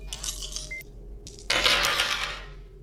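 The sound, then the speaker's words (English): Dice rolled for a science check in a tabletop game clatter and rattle in two bursts, a lighter tumble followed by a louder, longer roll across a hard surface, with a faint steady hum underneath and no talking. “I fucked up the dice. Let's do it again.”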